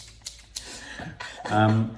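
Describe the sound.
A few sharp, crisp snips of a pair of shears, spaced apart, followed by a brief burst of someone's voice near the end.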